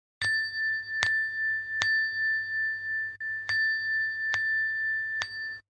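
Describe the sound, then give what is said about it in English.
A meditation bell, as used to start Zazen, is struck six times in a loose rhythm, each sharp ding blending into a steady, sustained ring that carries through the pauses. Clear, with no talking. “That's Jingle Bells. Jingle Bells, yes. Also the start of Zazen.”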